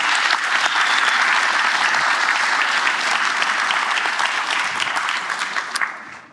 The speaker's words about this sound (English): That's how I take a vote. I'm going to say there's a motion and there's a second. And all in favor, let's give them a round of applause so they hear it.